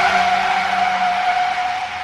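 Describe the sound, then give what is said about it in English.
A loud, sustained tire screech from a truck skidding hard in a crash, a steady high squeal with a rumbling undertone that holds for about two seconds before cutting off abruptly. “A truck will cream you out of nowhere.”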